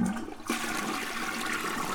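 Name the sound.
toilet flushing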